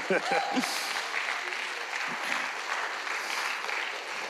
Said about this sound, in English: Yeah, you can clap. You can clap.